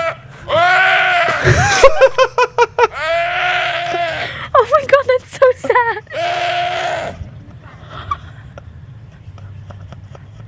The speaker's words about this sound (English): So this is a deer getting attacked by a bear, right? Oh no. Tell me it doesn't sound like a drunk guy.